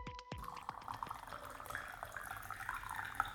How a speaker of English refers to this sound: It's the sound to beat all sounds, don't you think? The pouring of the tea. Yeah. I love it.